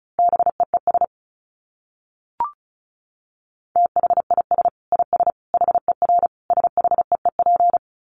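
Morse code sent at a fast 35 words per minute: a steady mid-pitched beeping tone keyed in rapid dits and dahs, a short opening burst, a pause with a faint click, then a longer run.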